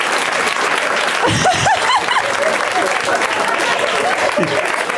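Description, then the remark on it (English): A show's audience cheers and applauds steadily with dense clapping when a movie is named, and a few voices whoop and shout over the noise before it settles into continuous applause. “This show's come to the point where people cheer when somebody pulls out one movie.”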